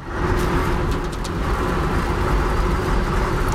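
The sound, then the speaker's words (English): Steady engine rumble from inside a car, a constant low drone with a faint hum riding on top, unbroken for the whole stretch and with no one talking. “I'm making notes to myself in the car after shouting myself hoarse at a concert with friends.”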